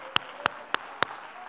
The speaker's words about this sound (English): Oh, clap your hands unto the Lord.